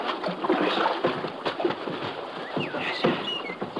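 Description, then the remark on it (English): Water splashes and sloshes steadily as a small boat is paddled in toward a riverbank to pull in to shore, with irregular strokes and a few faint bird chirps in the background; no one speaks. “Let's pull in the shore here”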